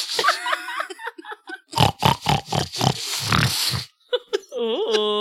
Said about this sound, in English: Hold on. Oh, the pigs found it.